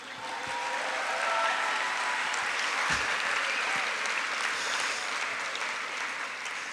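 A crowd applauds steadily for several seconds to thank the event's sponsors, a dense, even wash of many hands clapping at a constant loud level with no voices standing out.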